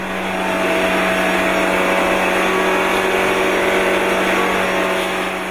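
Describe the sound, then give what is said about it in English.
A race car engine running on a dynamometer that tilts it to simulate the high G levels of racetrack cornering roars steadily at high revs, loud, a continuous droning whine with a low hum underneath and no voices. “And so we've been able to set up a dynamometer that you can tilt the engine to simulate the high G levels that you see on those cornering maneuvers on the racetrack.”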